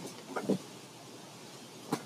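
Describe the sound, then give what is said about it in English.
Wind rustles through trees outdoors in the morning as a soft, steady, airy hiss, broken by a couple of brief, faint knocks near the start and end. No one speaks. “The wind's rustling the trees out here.”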